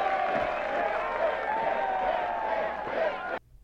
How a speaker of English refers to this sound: The whole town's cheering for Jane. Because the kid went and told the town.